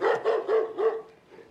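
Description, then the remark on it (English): A dog barking sound effect: four barks in a quick, even rhythm, loud, with the last bark trailing off into a brief quiet tail. “Well, neither the dog nor the stock's playing dead here.”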